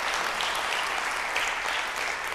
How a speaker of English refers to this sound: By the way, we have 71 people volunteering for VBS. Yeah. Can I get applause for that? Yeah.